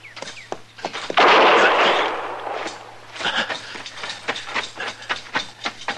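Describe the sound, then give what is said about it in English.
Gunshots crack out in a rapid, irregular string: sharp bangs with a loud, noisy burst early on, then a steady run of shorter pops. No one speaks. “Now, you've been hit, Chester. Well, he got me in the arm.”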